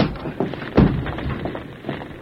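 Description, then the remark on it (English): A locked door of a burning building is forced open by two people hitting it together: a soft bump, then one loud, heavy crashing thud, followed by a few duller knocks and scraping rattles fading out. “The door is locked. We break it. We hit it together.”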